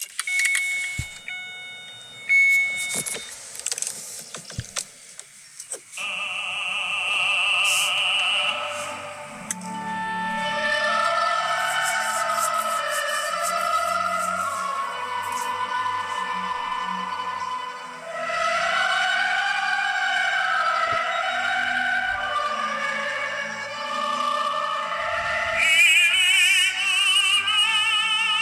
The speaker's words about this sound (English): But this is my classical album. There's some singing on there and there's also just orchestra pieces.